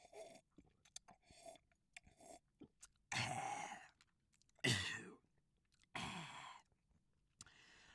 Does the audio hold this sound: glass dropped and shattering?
no